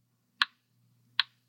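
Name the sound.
clock ticking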